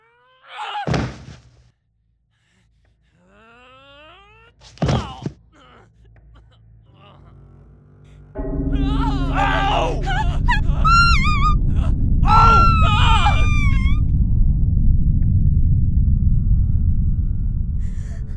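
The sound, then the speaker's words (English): Two heavy thuds land a few seconds apart as someone bangs against a thin wall of a room with no doors, trying to break through it; then a loud sustained rumble starts, with high squealing, chirping cries over it. “The more you bang, the more... Okay, so I can't bust through the walls.”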